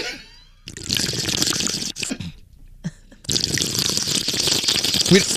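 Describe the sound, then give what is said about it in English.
Loud, wet slurping of soup in several long, noisy bursts, with short pauses between sucks and a few watery gurgles, no talking. “Here's scary slurping on some soup.”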